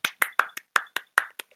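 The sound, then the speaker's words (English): A quick run of about nine sharp hand claps in a fairly steady rhythm, each a crisp slap with a short ringing tail, with no voices; clapping to celebrate a 'rig of the week' feature. “Hold on, let me clap again.”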